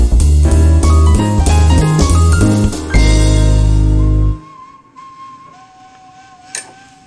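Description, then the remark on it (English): A loud burst of music with heavy bass cuts off, then a character in an animated movie, the big bad wolf, whistles a few thin, sustained notes, quieter and alone. “Is it just going to be his whistle?”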